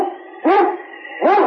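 A husky sled dog, the lead dog Yukon King from the radio show Sergeant Preston of the Yukon, barks twice loudly, with sharp rising-and-falling yelps spaced about a second apart over a steady, wailing howl-like tone in the background. No one speaks.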